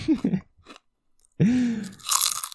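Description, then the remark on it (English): Loud crunching of chips picked up by a microphone comes in several sharp bursts separated by brief pauses, with some chewing noise mixed in. “I can't help but notice that you're loudly crunching chips.”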